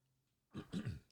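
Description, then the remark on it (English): A person clears their throat, a short rough burst in two or three quick guttural pulses, with quiet silence before and after. “Excuse me, I don't have a cough button on this thing, so if you hear me clear my throat, that's just what I did.”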